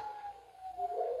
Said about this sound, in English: You hear them, Mr. Harker? The wolves? The children of the night